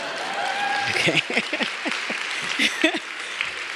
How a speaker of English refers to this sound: That's where you should clap. Okay.